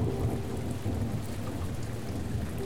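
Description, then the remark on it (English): Steady, heavy rain hisses throughout while a deep, low thunder rumble rolls continuously underneath, with no voices present. “Presently, the thunder grew fainter and rumbled away down the valley, and the rain spent itself.”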